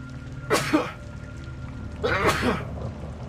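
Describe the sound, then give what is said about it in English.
Two sharp sneezes about a second and a half apart, each a bright breathy burst over a low steady background hum. “Oh, he said bless you, right? Thank you.”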